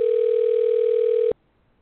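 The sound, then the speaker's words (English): A phone ring sounds as one loud, steady electronic tone that holds for just over a second, then cuts off abruptly into near silence. No one speaks. “That sounds like a phone ring.”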